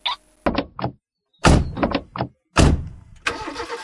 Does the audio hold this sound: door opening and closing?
yes